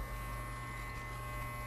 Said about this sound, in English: My beautiful wife is currently cutting my hair right now. That's the buzzing you hear in the background.